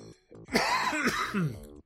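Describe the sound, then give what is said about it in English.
A person who ran out of drink a while back clears their throat with a short, rough cough-like rasp, fairly loud, lasting under two seconds with a brief pause near the start. “pardon me as I need to grab a cough drop, because I ran out of drink a while back.”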